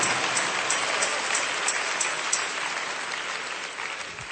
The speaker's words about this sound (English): Come on, let's clap our hands and praise the greatness of our God and what he has done.